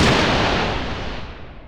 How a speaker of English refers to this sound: This lightning bolt shall reduce the Sentinel's computer brain to so much slag.